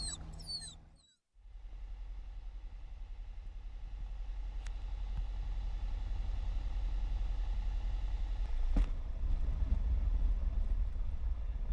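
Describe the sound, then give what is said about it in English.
An Arrow light aircraft on short final approach to runway 1 at Rutland County: its engine drones steadily, a loud continuous low rumble mixed with wind noise, briefly cutting out near the start before settling back into a constant hum. “Rutland County traffic, arrow on short and final, runway 1.”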